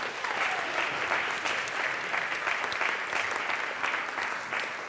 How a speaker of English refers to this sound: Brilliant. Well, I think we need a round of applause for our sailors.